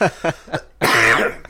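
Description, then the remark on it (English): A quick run of three short, throaty coughs, then a longer, harsher hacking cough, with no talking. “Can I have one of your cough drops?”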